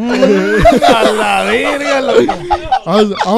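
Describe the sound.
A person vocally imitates a whale surfacing for air, with a drawn-out, breathy, wavering voice and hissy exhalations, fairly loud, lasting a few seconds with a brief break near the end.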